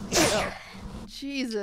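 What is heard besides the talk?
sneeze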